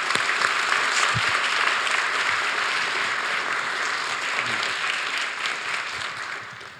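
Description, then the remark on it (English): A large audience applauds steadily, a dense wash of many hands clapping at once, holding loud and even for several seconds before starting to taper slightly toward the end. “Let's give them a round of applause, everybody.”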